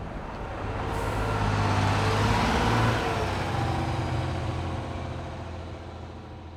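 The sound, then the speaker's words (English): A team bus rolls steadily north up Interstate 90. Its low engine drone and broad road roar hold constant for several seconds, fairly loud, with no voices. “The rest of the team gets back on the bus and heads north, up Interstate 90, a 4-hour ride to their next game against the La Crosse Bobcats.”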